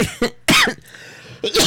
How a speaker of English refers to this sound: Closer to the mic when you coughed.